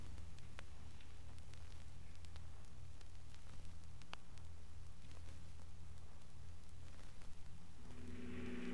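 A car engine rumbles steadily with road and wind noise while following another car, then revs higher toward the end as it speeds up. The engine dominates, with no voices.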